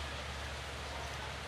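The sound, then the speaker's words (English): A steady, even hiss of rain falling in the rainy season, soft and continuous with no distinct drops standing out and no voices, at a low level. “Because we, I think, are now into our rainy season.”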